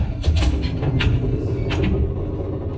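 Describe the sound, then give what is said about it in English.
Several doors slam shut in quick succession at Soundstage 33, heavy thuds landing over a low continuous rumble before things settle into quiet. “So, naturally we came right over, but when we got inside, all the doors slammed shut.”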